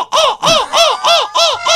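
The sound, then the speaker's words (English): A person imitates a crow with six loud, rapid, harsh caws in a steady rhythm, each a short nasal rising-and-falling squawk, with no talking. “You have the best impersonation.”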